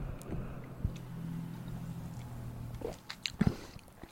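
sipping stout beer

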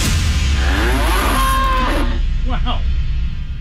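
cow mooing

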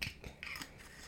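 beer bottle being opened

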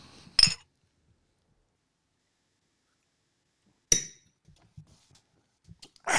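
glass clinking

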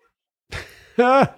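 dog howling

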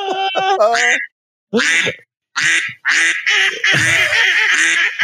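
flock of ducks quacking

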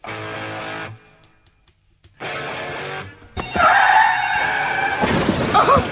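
car crash sound effect

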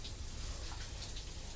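shower water running

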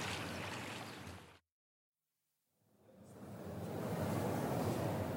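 water splashing

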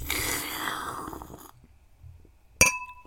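glasses clinking

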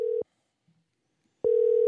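telephone call ringing out

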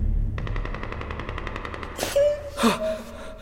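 gunshots

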